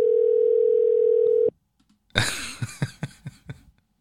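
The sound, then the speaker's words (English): A steady, loud telephone dial tone from a phone call placed over Bluetooth through a Rodecaster Pro holds for about a second and a half and cuts off abruptly, followed by silence and then a burst of bright clattering, rustling noise. “So we're going to place a call to”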